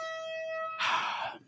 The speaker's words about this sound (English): With the air horn. It's the Nazi across the street with the air horn. Oh, boy. We hate him.